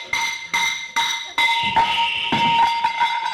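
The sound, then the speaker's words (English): A sledgehammer swung under a house bangs a water pipe four times at a steady half-second pace, each blow ringing with a bright, sustained metallic tone, then a continuous rushing hiss of water gushing from the broken pipe takes over beneath the ringing. “you've hit the water pipe.”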